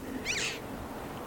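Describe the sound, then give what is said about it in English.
A single high, ringing call of a red-billed chough in a cow field by a calm bay, short and slightly squealing, rising clearly above a steady hiss of open-air background noise, then silence. “Now there is a blackbird. It's a chough. It's a chough.”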